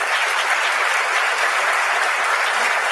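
Steady applause from a crowd, dense and even clapping that holds at a constant loudness for a few seconds without pauses or voices.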